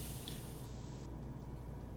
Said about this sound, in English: Do we hear anything? Other than the water.